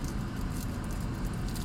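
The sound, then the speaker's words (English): Paper crinkles and rustles in a few short, scratchy bursts over a steady low rumble, fairly quiet throughout with no voices. “that's paper, guys.”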